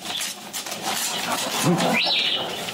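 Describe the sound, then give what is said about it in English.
A parrot named Nkisi gives a couple of short vocal sounds, a low warble followed by a higher, sliding whistle-like squawk, over a steady background hiss. “And on the other side of the screen, we have Nkisi verbalizing as she's doing that.”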